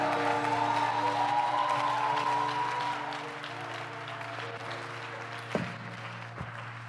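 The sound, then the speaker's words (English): A crowd claps together for Jesus in a dense, sustained burst of applause that holds steady for a few seconds and then thins out, with a low hum and a couple of sharp knocks underneath. “Would you give Jesus a mighty clap?”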